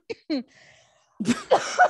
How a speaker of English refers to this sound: Excuse me? Sorry, Corona. I don't have Corona. It's so shameful to cough these days. Yep. I've been just holding in coughs.